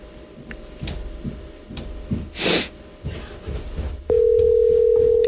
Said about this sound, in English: You hung up on me. The call dropped.